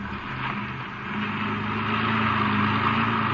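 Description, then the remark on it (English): A car engine hums steadily while driving, a continuous low drone with a faint rise in pitch and loudness partway through, with no voices. “you better drive around the cottonwoods and have a look”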